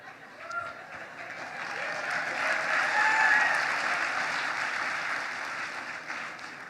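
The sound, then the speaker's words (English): Sustained applause from an audience, a dense crackle of clapping that swells to a peak midway and then holds steady, with a few faint whoops and cheers mixed in. “All right, so Jesus is alive, and that's what you cheer for.”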